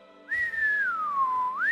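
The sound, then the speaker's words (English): A loud human whistle holds one clear tone that slides gently downward, then sweeps quickly back up at the end, heard alone with no talking. “Siren is going to whistle very loudly.”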